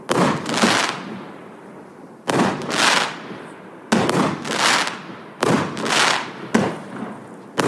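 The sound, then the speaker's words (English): Crackling fireworks showing red and silver colors go off in a series of sharp bursts about every second or two, each onset loud and followed by a fizzing, sputtering crackle that fades before the next burst. “There any crackle yet? Oh, there we go. Get some crackle.”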